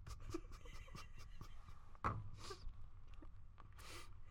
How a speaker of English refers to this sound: Crumpling up the piece of paper.